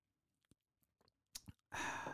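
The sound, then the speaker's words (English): A few soft mouth clicks, a short slurping sip of a drink taken as a toast, then a loud, breathy exhale of satisfaction. No talking. “And first sip is to you.”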